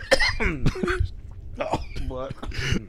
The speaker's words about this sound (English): I don't want to cough because I'm going to fucking die, dude.